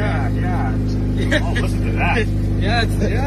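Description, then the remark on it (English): A car engine idles steadily and loudly while a kid grinds the starter trying to start his already-running car, with people talking over the running motor throughout. “The kid trying to start a car.”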